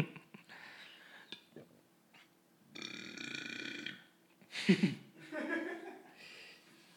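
Several throaty burps in a row, one long drawn-out belch followed by a louder, sharp burst, with some whispery breathing and soft chuckling around them.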